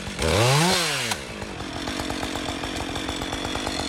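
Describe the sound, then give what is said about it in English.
A chainsaw revs up loud, its engine pitch rising and falling, then settles into a steady buzzing drone as a forest ranger cuts a segment out of a fallen yew branch. No voices. “That's Forest Ranger JP wielding the chainsaw there. He's just chopped a segment out of a fallen branch of yew.”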